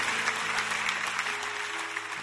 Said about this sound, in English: Clap your hands for that. For that promise, that timeless, ageless promise from Almighty God.